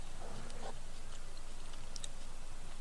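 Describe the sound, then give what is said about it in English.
Quiet chewing with a few soft, irregular mouth clicks and smacks over a low background hum, with no one talking. “I started chewing and I didn't hear what you said.”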